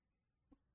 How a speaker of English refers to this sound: I'm going to cough again, by the way.